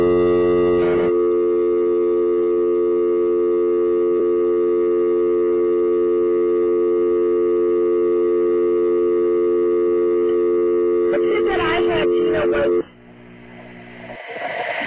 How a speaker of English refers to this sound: He said he was in a house, but it sounds like he was in like a truck and his head hit the horn at the end of it when he passed out.